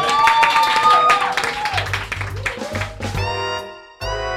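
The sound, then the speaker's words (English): An audience breaks into a loud round of applause, dense clapping mixed with cheers and whoops, which thins briefly toward the end before picking up again. “Can we have a last round of applause, please?”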